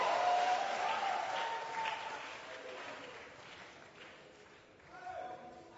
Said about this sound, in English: Why don't you clap your hands for Jesus and give the Lord a shout?